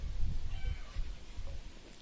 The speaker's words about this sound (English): Can you hear the roosters? Oh, they're chickens. They must have all laid eggs. Anyway, it's the ambience of the country. Shut up, girls.